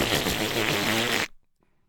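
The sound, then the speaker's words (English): A man's loud, buzzy fart rasps steadily for just over a second, then cuts off abruptly into near silence. “He farted? He did.”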